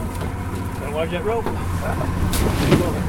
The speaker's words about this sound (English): is guiding a flat-bottom boat down a bayou in Terrebonne Parish, Louisiana. On board with him are his grandfather and uncle.